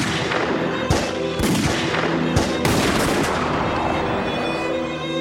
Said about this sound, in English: They line up for the photo in two neat rows when suddenly, 12 armed Bolshevik guards burst in and unleash gunfire on the Romanov family.